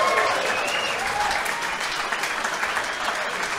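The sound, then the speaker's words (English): An audience applauds steadily for the winner of a Mortal Kombat game, a dense wash of many hands clapping at a fairly even level for several seconds, with faint crowd noise mixed in. “Guys, give a big round of applause.”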